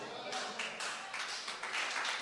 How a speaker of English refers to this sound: Those who are clapping, you are loose. Amen. Those who believe it, you are loose. Amen. Anybody that is clapping, I command your body loose.